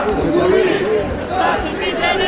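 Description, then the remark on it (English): A dense outdoor crowd of many voices shouting and chanting together in downtown Tunis, Tunisia, loud and continuous, with overlapping chants rising and falling, as people mark the anniversary of the 2011 ouster of President Zine El Abidine Ben Ali, dancing to revolution songs and celebrating freedom. “In downtown Tunis, crowds gather to mark the anniversary of the ouster of President Zine El Abidine Ben Ali.”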